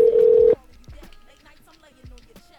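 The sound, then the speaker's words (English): A telephone ringback tone sounds on a call: one loud, steady burst for about half a second, cut off abruptly, then quieter voices talking in the background. “Is it just a bunch of ringing or what's going on here? No, this is just ringing.”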